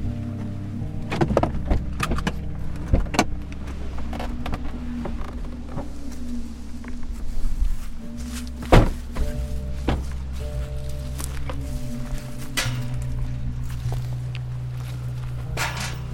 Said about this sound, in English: out of my car now, walking through the old dump site across the road from his former house.